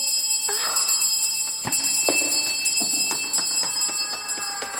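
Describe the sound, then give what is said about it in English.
A bell rings on and on without pause, a steady, shrill metallic tone punctuated by repeated sharp clangs and knocks, fairly loud throughout with no voices. “Oh, what's happening? Why does it keep ringing?”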